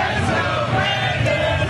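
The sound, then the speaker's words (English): A large crowd at Game 4 of the World Series in Atlanta chants "Let's go, Brandon!" in unison, a loud, dense roar of many voices rising and falling in a steady rhythmic cadence, with no single voice standing out. “Trump even got a chuckle when the crowd started chanting, "Let's go, Brandon!"”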